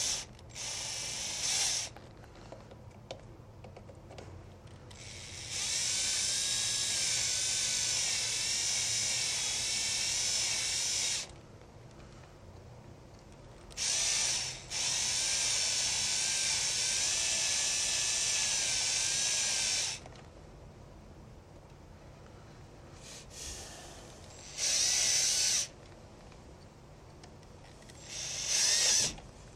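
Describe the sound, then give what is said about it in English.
A cordless drill drives a fastener in several bursts, two long runs of about six seconds each plus a few short trigger pulls, loud with a high motor whine and no talking. “I totally love the cordless drill.”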